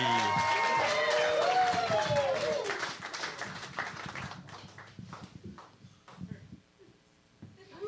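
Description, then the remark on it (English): A comedy show audience cheers and whoops loudly while applause rises as the first comic is brought up, then the clapping thins into scattered, uneven claps that fade over several seconds. “Start clapping right now”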